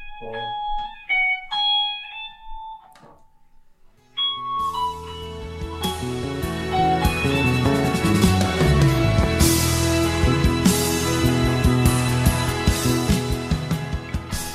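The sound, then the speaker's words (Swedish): A plugged-in Fender electric guitar plays alone, opening with a few clean, ringing single notes and a short pause, then launching into loud, dense, driven chords and riffs that continue steadily to the end. “om jag skulle plugga in den där fänden, skulle du kunna spela den för mig då?”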